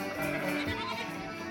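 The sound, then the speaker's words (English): A sheep bleats in County Kerry, Ireland, in one long, wavering cry that fills the whole moment, nasal and quivering, with no talking around it. “Cue the music. Cue the sheep.”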